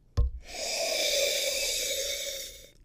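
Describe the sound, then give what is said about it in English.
A single long, deep sniff, a steady airy inhale lasting about two seconds after a brief soft bump, as someone noses a glass of Pet Name Petite Sirah wine. “So let's take a sniff of Pet Name Petit Sirah.”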